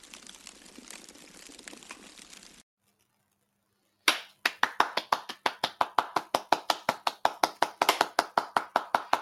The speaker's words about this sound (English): I'm doing that on purpose. I know we normally start with a clap.